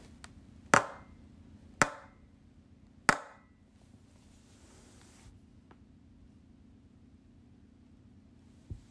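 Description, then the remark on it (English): A spoon knocks on a table three times at a steady pace, each sharp knock followed by a brief ring, then a steady low hum fills the quiet. “Sound number three, the sound of a spoon knocking on the table.”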